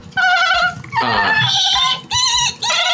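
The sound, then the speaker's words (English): Voices imitate dolphin chatter with a run of high, squeaky, wavering squeals and bleat-like whistles, loud and continuous across several bursts with brief pauses between them. “Something went wrong, and instead they're dolphin-esque clicks that I can't do, but fortunately you two do an amazing job on.”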